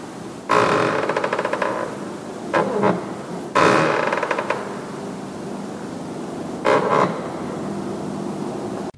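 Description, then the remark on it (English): An old wooden floorboard in St. Giles Church, London, creaks repeatedly underfoot: two long, grinding, ratchety groans, each followed by a shorter creak, fairly loud with no voices. “I love these little stories, and I certainly love the sound of this creaky old floorboard in St. Giles Church.”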